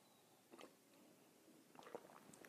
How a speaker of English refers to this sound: Join me now for the unparalleled pleasure, the dopamine hit of the day, the thing that makes everything better. It's called the simultaneous sip. It happens now. Go.